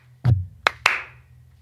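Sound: slow clap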